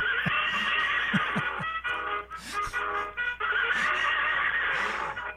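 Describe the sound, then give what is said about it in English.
A toy stick horse, bought on sale at Walgreens and kept in an office, lets out a long, loud electronic neigh, a wavering, buzzy whinny that fills about five seconds, with no one talking over it. “Let me see if Chuckles would like to say hello just for a minute here”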